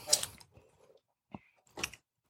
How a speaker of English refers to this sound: You know, what's aggravating me is you taking a sip of your drink like you right and you validate it.